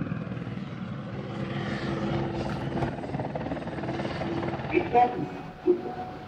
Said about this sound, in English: Like at one point, this helicopter showed up and started circling right above us.